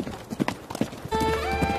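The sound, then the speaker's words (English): Horse hooves clip-clop in a steady rhythm as horses approach, a few sharp knocks at moderate loudness, then a sustained, ringing tonal sound swells in and continues to the end. “That sounds like horse hooves. They're coming this way!”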